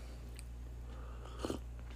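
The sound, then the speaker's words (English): Cats scuffling, with a short burst of scratching, biting and hissing noise about midway, set against a steady low electrical hum. No one speaks. “That's the cats back there hissing and scratching and biting and clawing.”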